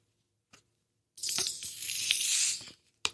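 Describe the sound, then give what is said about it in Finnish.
A bottle is opened with a faint click, then a loud, bright fizzing hiss rushes out for about a second and a half before fading, followed by a sharp tap. “Mäpä korkkaan tämän.”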